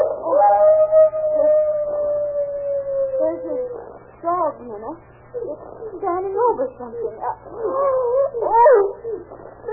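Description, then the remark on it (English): A dog out on the back porch howls in one long, steady, slightly falling note, followed by a run of shorter, wavering yowls and whines. The sound is loud, over a low constant hum. “That howling's coming from around the back somewhere.”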